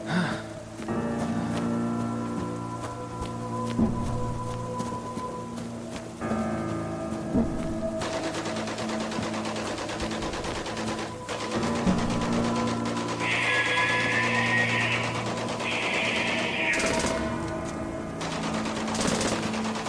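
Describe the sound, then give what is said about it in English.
Gunfire crackles in the distance in repeated bursts over a steady, dense background rumble, with occasional high shrill shrieks rising above the din; no one speaks. “The shrieks and the gunfire were louder now.”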